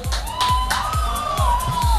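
A crowd cheers and roars steadily over a pounding, evenly spaced electronic kick drum and a sustained synth tone, the noisy cheering filling the whole stretch without a break.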